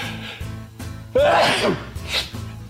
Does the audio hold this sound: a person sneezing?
yes